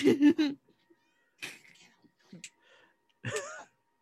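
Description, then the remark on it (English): A cat meows loudly in a few separate bursts while someone plays with it, the first a rapid string of strained, wavering cries, followed by quieter rustling and a final drawn-out yowl. “He's playing with a cat.”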